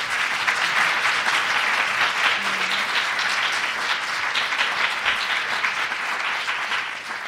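A crowd applauds steadily for several seconds, a dense, even wash of many hands clapping at once with no talking over it, holding a constant loudness before tapering slightly at the end.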